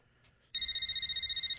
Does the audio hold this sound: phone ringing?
yes